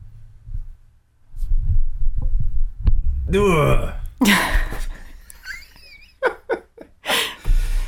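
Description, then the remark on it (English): Uneven microphone handling noise as the mic is moved closer to a person: low thumps and rumbling bumps, a squeaky creaking scrape, then a few sharp clicks and rustling bursts. “That's sounds it makes when I'm getting the microphone closer to you.”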